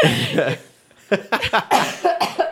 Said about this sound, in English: Don't worry. Just cough a shit ton. We can edit all this. Go ahead.